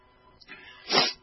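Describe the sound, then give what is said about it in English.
A single sneeze: a short breathy intake followed by a loud, sharp burst of air that fades quickly. No one speaks during it. “Oh, I've got to get tissues. I guess sniffles.”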